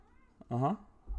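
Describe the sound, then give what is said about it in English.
A single drawn-out meow from the cat Moody (Alistair Moody), fairly loud, rising then falling in pitch over about a third of a second, with faint room noise around it and a low thump at the end. “Everyone, that's insight from my cat, Moody.”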